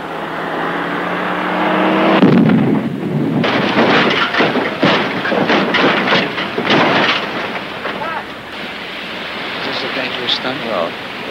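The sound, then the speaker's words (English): A stunt car's engine revs loudly for a couple of seconds as it jumps and leaves the ground, then a heavy crashing impact hits as it comes down, followed by a long stretch of clattering, grinding metal and rumbling debris settling. “Though this stunt had been planned and designed with the utmost care, no one could be sure exactly how it would work once the car left the ground.”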